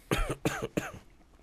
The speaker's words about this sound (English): So, apologies. This podcast will be riddled with coughing.